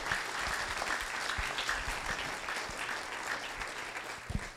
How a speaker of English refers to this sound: So at this time, let's welcome them to the stage and give them a huge round of applause.